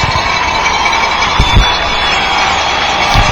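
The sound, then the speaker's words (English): A large stadium crowd of Crimson fans roars steadily, getting up as their offense goes back onto the field, a dense wash of cheering that swells slightly around the middle and stays loud and continuous throughout, with no clear voices standing out. “Crimson crowd getting up as the offense is going back onto the field.”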